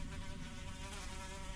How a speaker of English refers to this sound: Your strong little wooden arm pushes the strong wooden door, and you are promptly met with the noise of flapping wings.